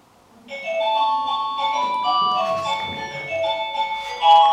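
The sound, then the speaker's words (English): A doorbell, its ringtone changed to be easier to hear from the kitchen, chimes out an electronic melody, a steady run of bright, sustained tones stepping up and down in pitch for several seconds, with a slightly louder note at the very end. “No, it's the doorbell. We changed the ringtone on it because it's easier to hear when you're in the kitchen than the other one.”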